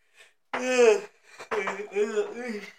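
A person lets out a long, drawn-out voiced yawn, followed by a second stretched, groaning exhale. No words are spoken.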